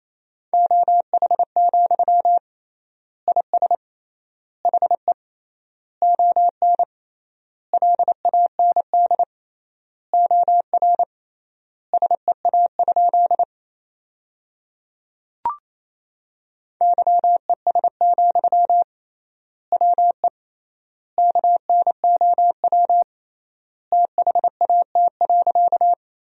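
Morse code sent at a brisk 28 words per minute with 3x word spacing, sending sentences made from the top 500 words: rapid bursts of a steady, mid-pitched tone beeping in clusters with clear gaps between words, and a short pause midway.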